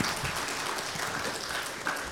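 A crowd applauds steadily, a dense wash of many hands clapping at an even, fairly loud level for a couple of seconds without a break.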